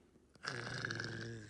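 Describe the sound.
A person imitates a dog's growl: after a brief quiet moment, one loud, low, raspy growl rumbles steadily for about a second, with no talking.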